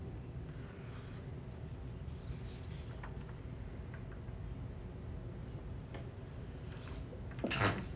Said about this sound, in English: Bless you.